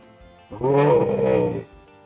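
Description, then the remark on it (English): A single deep, rumbling shout of pain from a voice run through a voice changer, loud and growling like a roar, lasting about a second before cutting off into quiet. “And, like, a rumbling shout of pain.”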